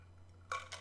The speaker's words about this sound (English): Give me a second to just drink some water here.